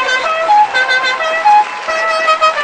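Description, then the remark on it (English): Sirens wail together in a loud, continuous blare, several shrill overlapping tones stepping up and down between pitches for a few seconds with no one talking. “I feel like we should have all these sirens going off right now.”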